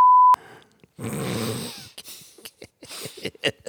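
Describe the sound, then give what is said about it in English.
A loud censor bleep, a single steady high-pitched tone lasting about a third of a second, followed by a rough snorting, wheezy noise and a run of short clicks. “Yeah, I'll bleep out.”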